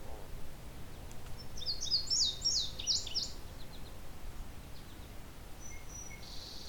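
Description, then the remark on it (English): A male indigo bunting perched on a dead tree directly overhead sings one bright, high phrase of quick paired notes lasting about two seconds, fairly close, over steady low outdoor rumble, with a faint thin call near the end. “Good clear listen to this indigo bunting, though.”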